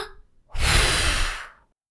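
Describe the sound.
A single breathy rush of blown air lasts about a second, hissy and toneless, a whistle attempt that produces no whistle at all. No one speaks.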